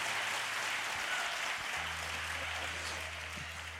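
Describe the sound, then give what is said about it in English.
A church audience at a morning service applauds for Jesus steadily, a dense wash of many hands clapping that stays strong throughout, with a low sustained organ-like tone humming underneath. “Can you give Jesus a big round of applause?”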